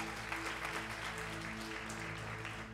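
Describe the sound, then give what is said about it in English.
An audience applauds the worship team steadily, a dense wash of many hands clapping at once with no single claps standing out, holding an even level throughout while a low steady hum runs underneath. “Give them another round of applause, please.”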